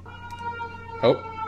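An ambulance siren passing by sounds throughout, a steady, high, wailing tone held at a moderate level, with a short louder burst of sound near the end.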